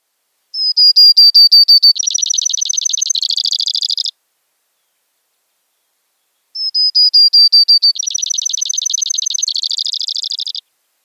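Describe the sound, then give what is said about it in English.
A Brewer's Sparrow sings a short, high trilling song twice, each a few seconds long with the trill shifting pace partway through, clear with silence between. “And here is the Brewer's short trilling song.”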